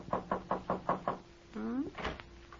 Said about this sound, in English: Over at Ma's house, there's a light burning cheerfully in the kitchen where Ma's been keeping herself busy since supper. And right now, there's a knock on the back door, and it's Shuffle who pokes his head in.